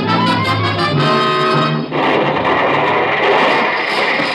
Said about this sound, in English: What happened? That explosion. That explosion was meant for me.